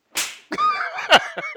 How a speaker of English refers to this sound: I was slapping myself.